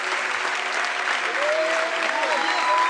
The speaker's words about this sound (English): And when they do that, all of us are going to cheer and encourage them. So if you're standing up, come out of your seat, come on down to the altar, and let's give them a hand as they come on down.